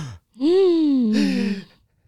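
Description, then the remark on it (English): A loud, horrified gasp: a drawn-out voiced cry that falls in pitch, with a breathy rush of air partway through, as if more than one voice joins in. No speech. “Lily and the Tromises gasped in horror as their eyes traced over the scars ripping vertically down her disfigured face”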